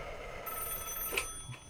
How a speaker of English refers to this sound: Ricky, is that the incoming line? Yes, it's an incoming phone call.